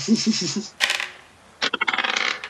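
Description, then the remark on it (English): Dice clatter and tumble across a hard tabletop in two bursts, the second a quick run of rattling bounces settling down, with a brief voice at the start; a stealth check rolled in a tabletop role-playing game, landing a natural 20. “Okay, but I'm liking these rolls now. I think I'm just going to use this dice.”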